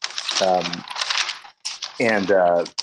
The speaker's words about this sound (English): he's like rustling papers in the background.